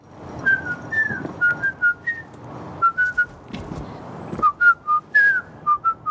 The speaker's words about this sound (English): And now Robert's memory is triggered. So it turns out he wasn't really lying at first. He truly didn't remember. And then the whistling triggers him.